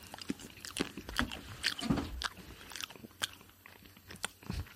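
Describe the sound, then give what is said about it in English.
Someone eating canned dog food: a steady run of moist chewing and mouth clicks, soft crunchy bites repeating irregularly at a modest volume, with no talking. “It's either going to be chocolate pudding or canned dog food.”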